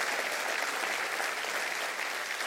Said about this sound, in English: Clap your hands and say, I'm loved today.